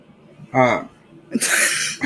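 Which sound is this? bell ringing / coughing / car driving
coughing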